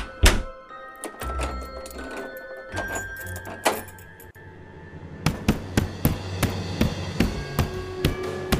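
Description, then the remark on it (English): Heavy, violent pounding on a door by a hulking animatronic, Larry the Ladybug: scattered thuds at first over a low hum, then a fast, steady run of loud blows, roughly a dozen in quick succession. “The animatronic started to pound at the door violently.”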